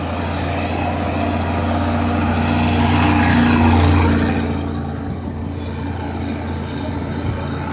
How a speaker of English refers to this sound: Yeah. Big lorry. Yeah, that big lorry, I don't think would pass the environmental standards in Japan. It was blowing out black smoke on the side. I'm not sure. Right into our faces. I don't know. Luckily it went past quickly.